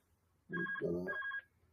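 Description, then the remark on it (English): A phone ringtone sounds once in a short electronic burst lasting about a second, with a steady high tone over warbling lower notes, clear with no one talking. “Switch the phone off.”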